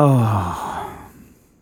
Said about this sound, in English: Now I'm yawning. What's going on?